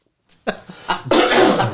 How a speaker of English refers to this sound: You're coughing. Oh, yeah, coughing. I'm not contagious. Don't worry, he's not contagious.